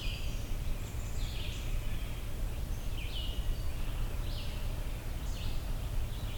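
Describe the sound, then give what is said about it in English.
A northern flicker repeats short, bright "chew" calls, about six sharp notes spaced irregularly over several seconds, heard against a steady low rumble of background noise. “Those chew, chew kind of calls.”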